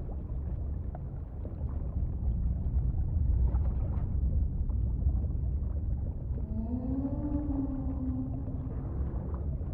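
A long, rising and falling whale call with clear harmonics sounds over a steady low rumble of underwater noise, preceded by a few faint moans. No one speaks.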